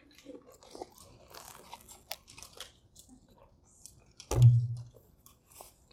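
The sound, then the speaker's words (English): Scattered crackles and crinkles of plastic water bottles being opened by an audience told to take a sip, with a louder crunch near the end, then fading; no one speaks. “Everyone, pick up the bottle. Yeah. Open the bottle, take a sip.”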